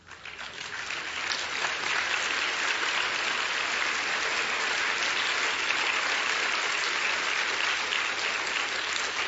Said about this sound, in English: I really don't know whether you're clapping because you're glad I'm finished or whether... Anyway, thank you very much.